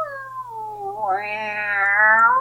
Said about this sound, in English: because we had to do, like, they'd say, all right, we want 3 seconds of cats fighting. You know, all right, we want 1 minute of cats cooing.